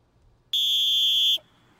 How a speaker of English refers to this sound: Halftime. Wow. Sharp whistle today. You had more? Sharp whistle. No, I'm talking about the literal whistle.